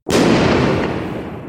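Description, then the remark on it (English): A single loud explosion from a light-triggered photochemical chain reaction involving chlorine erupts abruptly, its broad, roaring blast lingering and slowly fading away over the next second or so, with no voices present. “The light that started the whole scheme runs a photochemical so-called chain reaction leading to an explosion.”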